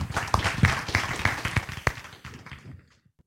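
A crowd applauds at the close of an American Planning Association program on environmental gentrification, dense, overlapping hand claps that hold steady for about two seconds, then thin out into a few scattered claps and fade to quiet.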